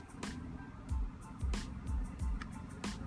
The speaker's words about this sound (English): Sitting here, the car's running. Shut that thing off.